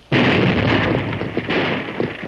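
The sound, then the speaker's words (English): A sudden, loud blasting powder explosion blows up a dam at a water gap, erupting and roaring as a broad, rumbling wall of noise, rolling on with crackling debris for a couple of seconds without fading much. “The explosion blasted the dam between this water gap and Dry Gulch.”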